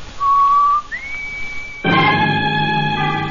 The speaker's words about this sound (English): Outside, at the front of the building, Dale whistles the warning signal to Roy and Jonah.